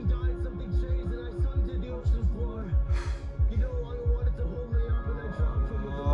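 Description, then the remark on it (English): A steady heartbeat sound effect thumps low and fast throughout, layered under sustained musical tones, with a brief airy hiss partway through. “Oh, heartbeat, yeah, that's fucked up.”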